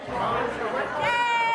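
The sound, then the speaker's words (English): Dense, steady chatter of large crowds dining inside a restaurant in Castle Rock, Colorado, without social distancing, many overlapping voices blending into a loud babble, with one sustained higher voice rising clearly above the hubbub in the final half-second. “Open defiance at this Castle Rock, Colorado restaurant. Large crowds, no social distancing, ignoring a state rule that bans dining inside.”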